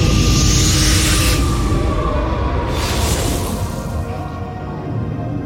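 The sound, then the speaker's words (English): A deep, muffled underwater rumble surges outward in a loud whooshing wave, like a pulse from a silent scream spreading through the water, with two airy swells of hiss riding over a constant low churn before it slowly eases off. “There's this like pulse that emits from you in the water. This silent scream that moves out like an energy wave.”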